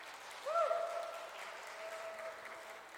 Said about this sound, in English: Thank you, worship team. Wonderful job as always. Could we get a round of applause for our worship team, please?